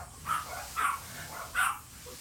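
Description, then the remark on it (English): Dogs bark three times in an uneven sequence, the sharp yelps moderately quiet against a faint background hum, with no one speaking. “Oh, really, dogs?”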